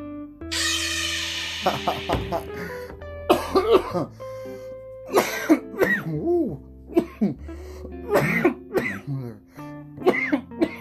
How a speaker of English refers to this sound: Coughing up a lung. Might sound like I have baby lungs, but I do like to cough to get off.